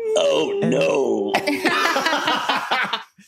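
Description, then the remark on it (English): A young girl's frightened whimpering, high and wavering, breaks into breathy, shuddering sobs that come in quick uneven gasps before trailing off into silence. “His cry was immediately followed by the frightened sobs and whimpers that are immediately, unmistakably those of an ordinary little girl.”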